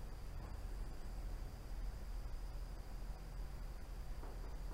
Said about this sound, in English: or even right now, if you stop, and you close your eyes, and you listen, and you hear the rain outside. Just hear the rain.